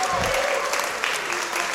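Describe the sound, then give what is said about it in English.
A crowd claps steadily, a dense wash of applause that stays loud and even throughout, with a faint voice briefly audible at the start. “Give a round of applause”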